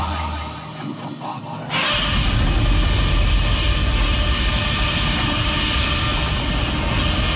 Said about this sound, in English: This is a chopper.